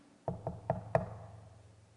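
impact, knocking on a door

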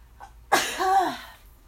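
human body sound, sneeze

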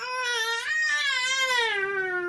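human body sound, baby crying

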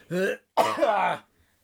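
human body sound, coughing

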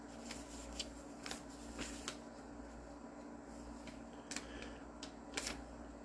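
household object, turning a paper page

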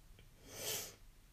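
human body sound, sneeze

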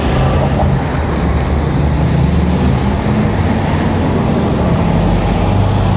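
nature, wind blowing outdoors

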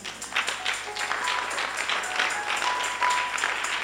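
crowd, audience clapping

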